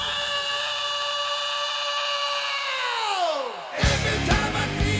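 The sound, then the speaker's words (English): A long, strained screamed vocal in the middle of a song from an album holds steady, then slides sharply downward in pitch before crashing into a loud, distorted burst of heavy music that continues to the end. “See what scream you're talking about, the middle.”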